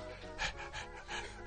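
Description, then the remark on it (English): A service dog pants in quick, rhythmic breathy huffs, about four bursts in a row with a steady, airy hiss between them and no voices. “So they get that dog out of here.”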